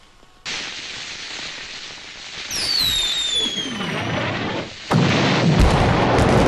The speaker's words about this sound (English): Check out the bottle rocket.